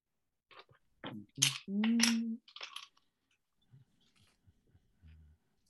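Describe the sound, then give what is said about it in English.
Hard little objects clatter and click on a surface in a quick burst of sharp rattles as dice are rolled for a sanity roll, with a brief muffled vocal sound mixed in and a few faint taps afterward. “Let me get my dice out.”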